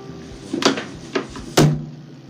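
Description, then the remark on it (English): Someone bangs their head on a table three times, each a dull, heavy thud at uneven intervals, with the third hit the loudest. No one speaks. “Okay, in case you didn't hear that, that was me banging my head on the table.”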